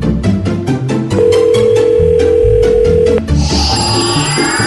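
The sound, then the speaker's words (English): A telephone call rings out with one steady, sustained ring tone lasting about two seconds, heard clearly over busy background music, with no one talking. “I always love calling it this time of year because it means that they are getting ready for Christmas, and usually that's when all you-know-what breaks loose.”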